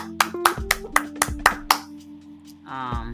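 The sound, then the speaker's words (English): A quick run of about seven sharp hand claps in an even rhythm over a steady, ringing tone, followed by a short stretch of voice after the claps stop. “No, I just clapped. That was like the worst clap ever.”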